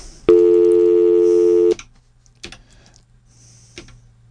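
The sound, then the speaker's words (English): A loud, steady telephone dial tone after a dropped call drones for about a second and a half, then cuts off abruptly, leaving a few faint clicks over a low line hum. “I got dial tone here.”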